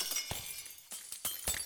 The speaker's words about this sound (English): And you hear a shattering of glass.